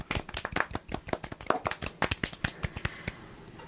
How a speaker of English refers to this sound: Oh, sorry. Are we clapping here?